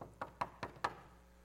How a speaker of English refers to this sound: I don't think you're going to barge in. I think he knocked on the door.